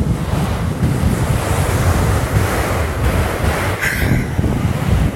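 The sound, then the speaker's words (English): Ocean waves wash onto a beach in Encinitas, California, in a steady, loud roar, with broad rushing surf and gusts of wind buffeting the microphone throughout; no voices are present. “So yeah, I'm not in a perfectly soundproof room, but what I hope you can hear is maybe the ocean.”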